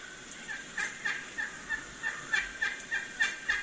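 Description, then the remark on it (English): A wild turkey gobbles in a rapid, rattling series of throaty notes that pulse steadily for several seconds, moderately loud against a faint background hiss, with no one talking. “Just kind of listening to probably my favorite subject for sure, and that's turkeys.”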